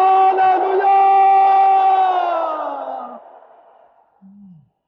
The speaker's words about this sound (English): Is anybody here tonight who believes that from now on, till you see Jesus in glory, you will have joy like a river? If you are the one, let me hear you shout hallelujah.